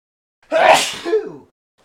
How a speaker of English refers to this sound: Excuse me, I got to cut out that sneeze. Cut this out.